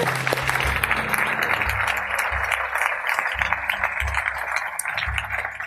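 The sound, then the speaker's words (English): A church audience applauds steadily for people who gave their hearts to the Lord, a dense wash of many hands clapping at an even loudness for several seconds, with low rhythmic thumps of music underneath. “Let's clap for those folks who gave their heart to the Lord.”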